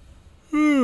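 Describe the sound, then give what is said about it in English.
A loud, close-up yawn begins after a brief quiet moment, a strong voiced groan sliding slowly downward in pitch, very near the microphone and cut off mid-breath. “Just yawned right in the microphone.”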